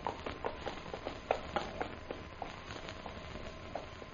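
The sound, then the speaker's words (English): Hooves of an approaching ridden horse clip-clop in a steady, uneven patter of sharp knocks, fairly faint, over a low background hiss with no voices. “Horse come there.”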